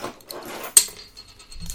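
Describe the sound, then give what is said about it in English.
A bottle cap is pried off with an opener: one sharp metallic pop followed by a brief airy hiss, surrounded by faint rustling and handling noise. “So let's, I got my bottle opener right here.”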